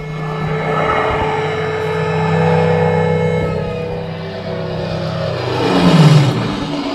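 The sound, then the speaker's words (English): A recorded sound effect of a plane going over, triggered by a sensor as visitors enter an aviation exhibit evoking the 1940s: a steady, droning engine roar with layered humming tones that swell louder near the end as the pitch bends downward, and no voices. “So, as you may hear in the background, that's the sound effect of a plane going over.”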